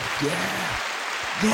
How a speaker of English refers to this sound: Let's give a big round of applause for y'all.